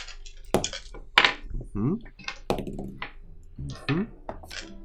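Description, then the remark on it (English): Dice clatter in a series of sharp, irregular knocks and rattles, muffled by a wall, with faint voices murmuring between the bursts. “Start off with an unseen roll in the background.”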